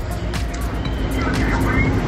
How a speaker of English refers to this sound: Truck after beautiful truck leaving the factory.